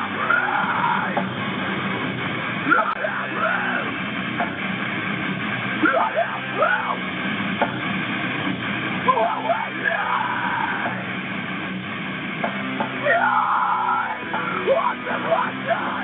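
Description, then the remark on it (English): A loud, dense metal track with harsh screamed vocals over a wall of distorted guitars and pounding drums, playing continuously and slightly muffled, as if heard through a low-quality recording. “Say screaming. I say singing with emphasis.”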